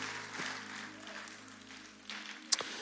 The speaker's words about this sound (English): Amen. Would you clap your hands one more time and give God a praise for his word tonight?